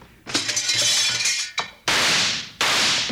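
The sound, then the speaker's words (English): A lamp's glass is knocked out and shatters in a bright crash, its high tinkling ring lasting over a second, then two loud harsh bursts of noise follow in quick succession. No one speaks. “Knock out that lamp and get on.”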